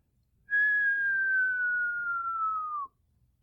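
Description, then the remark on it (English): A person whistles a single long, steady note that slowly slides downward in pitch for about two seconds, imitating a falling bomb; loud, with no talking. “And then you were hearing the whistle get louder and the bomb getting closer.”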